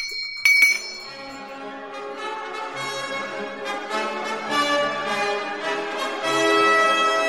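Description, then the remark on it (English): A single bell is struck sharply, then rings out with a long, shimmering sustain of layered metallic overtones that linger and swell slightly without fading for several seconds. “if you're ready to ring that bell, brother, it's Pilot's Guide time”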